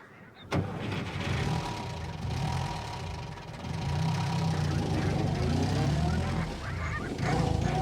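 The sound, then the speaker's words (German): A car engine cranks and catches with a sudden burst, then settles into a steady low rumble that swells and climbs in pitch as Schaut and Otto drive away. “Schaut und Otto wollen wegfahren.”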